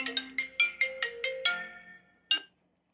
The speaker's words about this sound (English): It's just a, oh, hold on, it's my phone.